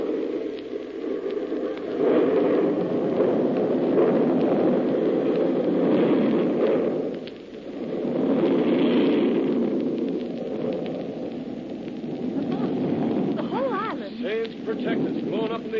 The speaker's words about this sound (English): I fused one of their bombs before I left the island. Everything on the island wiped out.